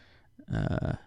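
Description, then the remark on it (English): Special dice rattle and tumble across a hard surface, rolled for magic sword damage, a brief burst of quick clicking clatter lasting about half a second, then stopping. No voices. “And then I want my special dice.”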